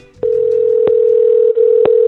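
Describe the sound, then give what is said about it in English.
A steady, loud telephone dial tone drones on with a brief dropout near the end, punctuated by a few sharp clicks, with no one speaking. “The only way to find out is to go to the phones.”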